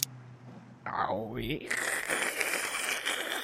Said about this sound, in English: Sounds like static to me. Why are you shouting? The static is so loud. Can't you hear it?